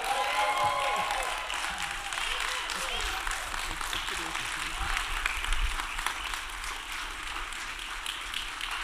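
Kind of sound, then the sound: crowd, audience applause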